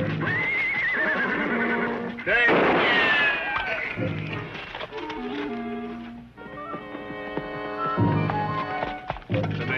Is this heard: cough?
no